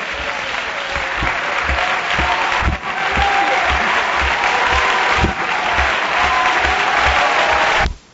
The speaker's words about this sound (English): Would you clap one more time for the Lord? With all of your heart and with all of your might.